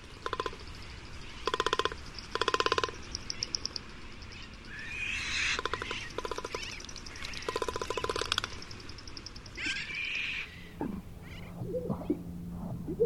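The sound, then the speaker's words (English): A magnificent frigatebird beats and rattles its inflated throat sac with its long beak: several bursts of fast, hollow drumming clatter, separated by pauses, over a steady background hiss, with a few lower calls near the end. “Inflated throat sacs beaten and rattled with a long beak. Magnificent frigate bird.”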